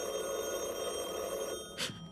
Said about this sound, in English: Is that for us? It must be. It's the living room phone. Come on, let's answer it.